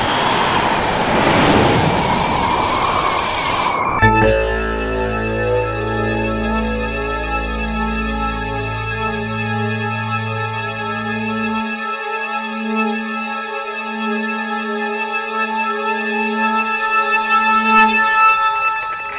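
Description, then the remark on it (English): A loud, roaring rush of an airplane crashing into an island prison, swelling then cutting off abruptly after a few seconds, followed by heavy sustained droning tones that hold steady to the end. No one speaks. “A plane is crashing into the island.”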